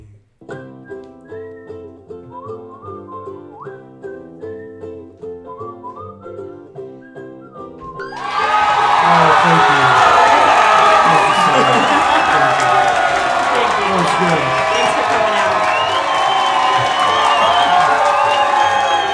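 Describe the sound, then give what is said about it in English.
A few seconds of soft tonal music give way to a sudden, loud roar of crowd cheering and shrill whistling that stays dense and sustained until the end. “International crowd, they're on satellite, so there's a little delay there.”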